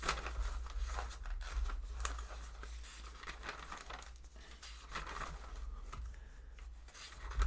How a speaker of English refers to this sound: Now, I know how many I've made, but it just feels like I should rustle the paper around for some reason.